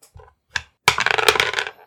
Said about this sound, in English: So grab your dice. Let's roll initiative.